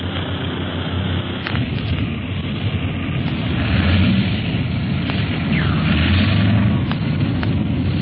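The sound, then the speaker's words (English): A large airplane's engines roar in a heavy, steady rumble while it lands in a wind, with several sharp thuds and rattles as it bumps down roughly, loud with no talking. “Harder to land this big ship than the old pursuit planes in a wind like this.”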